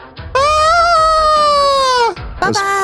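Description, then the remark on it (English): A loud goat bleat holds for nearly two seconds with a slight waver, bracketed by short vocal bursts just before and right after it. “Goats.”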